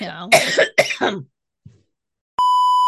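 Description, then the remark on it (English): Several harsh coughs in quick succession from a person with a cold, followed by a brief faint throat sound, then a steady electronic beep tone cuts in and holds. “Let me cough first.”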